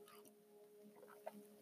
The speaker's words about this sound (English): Wow, my first hit of coffee. Who would have thought I'd do a podcast without the first hit of coffee? Well, actually, I've had one. This is my second, but I still feel like I'm trying to wake up.